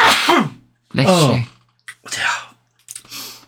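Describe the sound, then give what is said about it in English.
A rapid series of loud sneezes, about four bursts in quick succession, the first two strongest and voiced, the later ones breathier and sharper, with no talking. “Bless you.”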